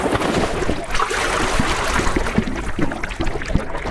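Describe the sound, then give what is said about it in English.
A scuba diver going into the water: steady rushing and bubbling water with scattered splashy knocks throughout, fairly loud, and no one talking. “I'll be leaving the way I came in. Using scuba equipment in this body of water.”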